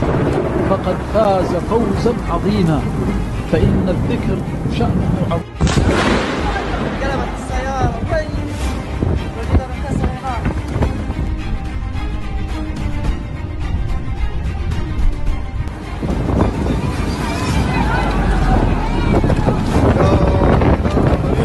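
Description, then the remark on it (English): A thunderstorm over Mecca with loud, gusting wind roaring throughout, broken by one sharp, sudden thunder crack early on; indistinct voices murmur faintly beneath the storm noise. “Fascinating storm over Mecca. Here's one that's showing you a little bit more of how intense that actually got.”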